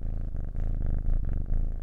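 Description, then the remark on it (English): A cat purrs, a steady low rumble pulsing in a regular rhythm for a couple of seconds, with no talking over it. “I rudely got interrupted by a special guest. Say meow.”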